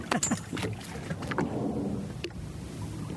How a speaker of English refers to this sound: Unfortunately, there's several whale spotting boats as well, so we've got some noise to compete with.